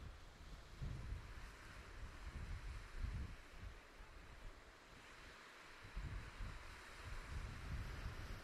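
Steady wind buffets the microphone on a beach over a continuous wash of breaking surf, with low rumbling gusts swelling and easing throughout and no voices.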